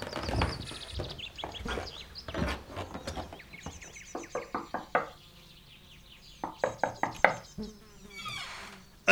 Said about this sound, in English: I'm here at Miss Oakley's home, and I'm about to knock on the door.